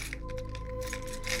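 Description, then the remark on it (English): A maintenance worker's large bunch of keys jangles and clinks in a few quick, bright metallic bursts over a low steady hum as he unlocks an apartment door, fairly quiet, with no one speaking. “Why do I have so many fucking keys?”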